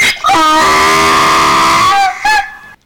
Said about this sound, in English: That's the donkey.